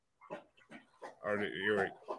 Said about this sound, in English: It sounds like Michael Vick's house over there. It's one dog trying to rape another dog, basically.